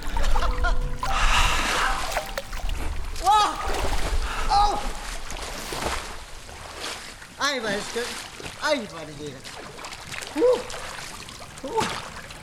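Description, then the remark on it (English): At a winter bathing club, someone wades into cold sea water of about 5 degrees, with air just above zero, with a rush of splashing. Then they let out a series of sharp gasps and strained, wavering cries as the chill hits, amid softer sloshing. “Det er sådan en dukkert. I den kolde gys.”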